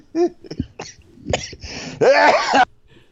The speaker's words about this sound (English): Excuse me. Oh, my God. Jesus, don't make me laugh. Coughed up a fucking lung.